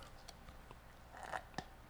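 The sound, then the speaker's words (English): Quiet mouth sounds of someone sipping a thick smoothie: a few soft wet clicks, then a brief slurping pull, and a final sharp smack, with no talking. “As I sip my smoothie.”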